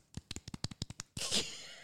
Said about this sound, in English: I don't know if you can hear that, but that's us clapping.